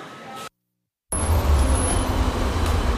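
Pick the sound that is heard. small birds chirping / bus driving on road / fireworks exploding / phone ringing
bus driving on road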